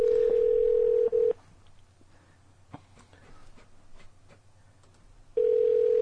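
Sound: phone call ringing tone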